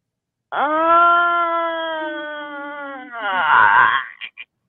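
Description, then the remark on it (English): An exaggerated, drawn-out yawn: a loud voiced tone held for nearly three seconds, sinking slightly in pitch, then breaking into a breathy sigh and two quick mouth clicks. “So I've been perfecting my yawn in preparation for this match.”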